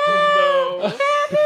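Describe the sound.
A voice imitates a screaming abducted child from inside a big white van with tinted windows at a gas station: a loud, sustained high-pitched wail that wavers and breaks briefly twice before carrying on, with no other sounds around it.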